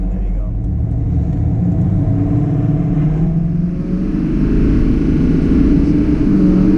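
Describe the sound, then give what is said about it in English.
A diesel pickup truck's engine accelerates hard in a roll-on, a loud, steady low rumble heard from inside the cab, its pitch climbing as the truck reaches 60 over several seconds. “Rolled on at 60 already. Now we're gonna stop because they're stopping up ahead. But this thing just gets up and goes.”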